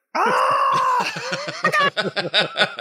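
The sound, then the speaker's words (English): A person imitates a high-pitched scream: one long, strained, wavering cry that breaks into a series of choppy, shrieking bursts. It is loud, with no other talking. “There were she, two screams. She had like a high pitched.”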